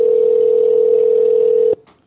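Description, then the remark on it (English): A steady, loud telephone ring tone hums continuously over a phone line for nearly two seconds as a call is placed to a randomly selected winner's home, then cuts off abruptly with a click, leaving faint line noise. “If they don't answer the phone, we don't give them the tickets.”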